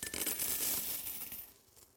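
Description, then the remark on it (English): A stream of coins pours into a collection container as a donation to orphan care, a dense, bright metallic clatter and jingle that keeps up steadily for over a second before thinning out and settling into quiet. “And so I pour in some.”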